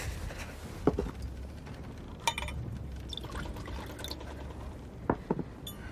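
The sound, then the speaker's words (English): Water pours steadily into a vessel, with a continuous liquid trickle and a few sharper clinks and splashes standing out along the way. “You need to drink some water.”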